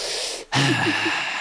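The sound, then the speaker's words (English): A voice imitates heavy breathing: a sharp, noisy rush of air after a brief pause, then a sustained breathy exhale with a few faint pitched wheezes, fairly loud and with no talking. “So who are you breathing on? Heavy breathing.”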